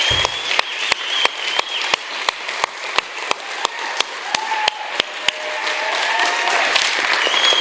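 An audience breaks into a long, steady round of applause to thank their officer ahead of his last Sunday with them, a dense wash of clapping with a few sharp claps ticking out in a regular beat on top. No one speaks.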